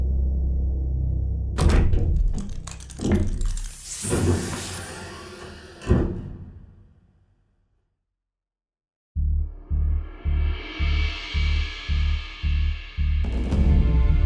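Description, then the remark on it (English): A heavy mechanical door clanks and thuds open with several metallic clunks and a rushing hiss, then goes quiet before a steady rhythmic pulsing hum starts up. “Open the door”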